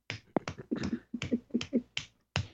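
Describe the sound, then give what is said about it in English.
Roughly nine sharp hand claps in an uneven rhythm, each a crisp burst with a short ringing tail, with no one speaking over them. “I was clapping.”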